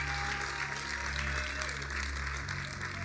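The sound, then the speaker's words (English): A church audience claps for Jesus steadily and densely, a continuous wash of many hands at an even, loud level, with low sustained keyboard or organ tones humming underneath throughout. “Can you clap for Jesus for making a way where there is no?”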